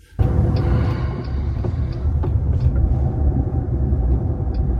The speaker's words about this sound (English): because it goes into an intersection and the light turns red and the car kind of panics for a minute, and there's cars coming towards us and there's a car getting closer, and then it decides, okay, now it's time to turn left in front of this car.